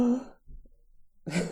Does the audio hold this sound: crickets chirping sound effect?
no